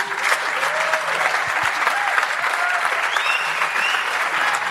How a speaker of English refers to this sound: I am here with you all the way, and I want to ask anyone else who's with this group all the way to stand on up and give them a big round of applause.